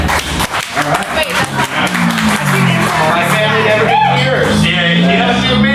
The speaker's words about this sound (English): clap if you don't know what this was when you walked in. Clap if you've never seen our faces before.